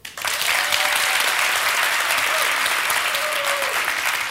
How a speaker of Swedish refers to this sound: Men alltså, du med, ni som tycker om att åldras, ni applåderar nu.